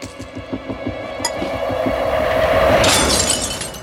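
A Waterford crystal bowl of fruit is knocked over: a tumbling clatter builds into a bright, loud crash of shattering glass, with a sustained ringing spray of shards and no one speaking.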